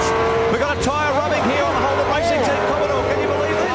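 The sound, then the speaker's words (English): Race car engines roar steadily on a track in crash footage where a Falcon race car has its whole front taken off, with rising and falling revs and a brief tire squeal, while voices talk excitedly over the top throughout. “Now, the best part of that footage was the front of that Falcon was literally like, it was like someone unplugged it like Lego style off the front.”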